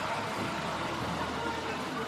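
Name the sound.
truck engine running nearby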